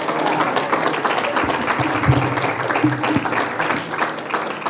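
A crowd applauds a speaker steadily for several seconds, a dense, continuous wash of many hands clapping at a fairly loud, even level, with faint voices murmuring underneath.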